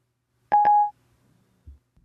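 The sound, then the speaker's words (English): A phone plays a brief DTMF dialing tone as Siri places a call instead of sending a text: a single short, clear electronic beep lasting under half a second, followed by a faint low thump and quiet. “It heard my home as call.”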